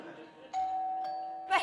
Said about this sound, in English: what if we were to ignore the Hallowe'en doorbell? What? Ignore the Hallowe'en doorbell.